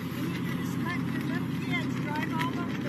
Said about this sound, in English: They're playing. That's what the park is for. I never saw a car in here before. It's a Power Wheels car, man. It doesn't bother me. What bothers me is you have a little kid in here that doesn't have a driver's license. He's just a little kid